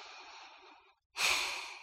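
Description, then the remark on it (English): A person takes a deep breath as part of a breathing practice: a soft, steady inhale, a brief pause, then a louder, rushing exhale that slowly fades, with no talking. “Take a breath in and out.”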